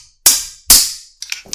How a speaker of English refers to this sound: I love how this mini stick clap is totally unnecessary because we're not even doing video, but I like to do it anyway.